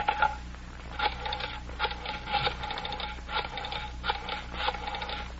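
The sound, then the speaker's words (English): A telephone belonging to Mr. Butler is being dialed to call Lane's girl: a series of short mechanical clicking bursts with brief pauses between them, like a rotary dial turning and spinning back, with no voices. “Mr. Butler, may I use your phone?”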